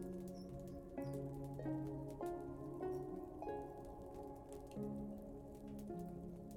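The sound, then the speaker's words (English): Steady rain patters continuously throughout, a soft even hiss of drops blended beneath gentle, sustained musical tones that shift slowly from note to note. “The warmth of the fireplace and the soothing sound of the rain continue to wash over you, and you feel completely at ease.”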